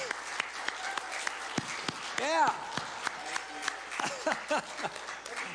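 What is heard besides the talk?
audience applause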